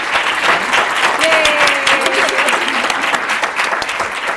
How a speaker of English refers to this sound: Can we please have a round of applause, though, for our authors today?